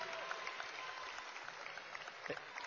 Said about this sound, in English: So I hope the first morning of the first Neighborhood Empowerment Summit was enjoyable from the feedback we're getting. People seem to have enjoyed it. We'll vote by applause. How's that? Yay!